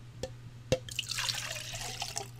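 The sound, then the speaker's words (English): Two light clinks, then a soft, steady trickle of water being poured into a cup, fairly quiet, with a low hum underneath. “I got you a glass of water. I poured it in the cup like so.”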